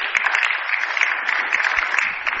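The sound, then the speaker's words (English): A crowd applauds steadily, a dense wash of clapping hands that holds at an even, fairly loud level throughout with no voices breaking through. “Yeah, you can clap that.”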